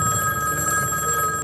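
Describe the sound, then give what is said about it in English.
A telephone rings with a steady, bright electronic tone, fairly loud, sounding alone without any voices for a second and a half. “The phone rings, cutting him off mid-midlife self-talking crisis.”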